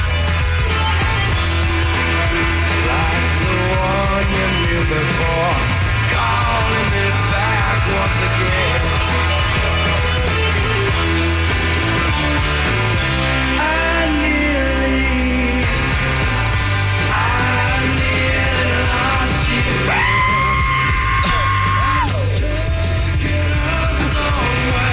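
A grunge rock song plays loud and full, with distorted guitars, steady drums and a strained, shouting male vocal running throughout.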